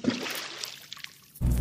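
Cold water in a bathtub trickles and splashes, thinning to a faint dribble before a sudden, loud rush of pouring water surges in near the end.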